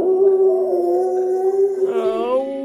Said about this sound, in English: And so you race back to town, but you hear a howl in the distance.